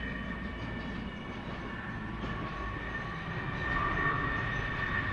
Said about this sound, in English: It's bigger than a jumbo. That's a massive aeroplane. It's huge. You can put, I think, 5-6 battle tanks inside that. A couple of helicopters. You can hear it now coming over. Look at it. Oh, it's just huge, isn't it?